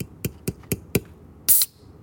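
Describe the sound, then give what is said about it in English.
Four evenly spaced light taps on a can, then a sharp crack and a short bright hiss of fizz as the soda can is pulled open. “We're going to crack it open.”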